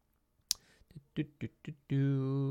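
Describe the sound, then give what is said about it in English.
A single crisp computer mouse click in Notion, generating a new session planning template, rings out distinctly near the start, followed by short bursts of someone speaking and then a sustained voiced sound. “So we generate a new session planning template by clicking on that.”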